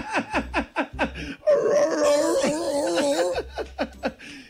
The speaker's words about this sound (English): Who's going to check? All right, who's going to check out the sea lion noise?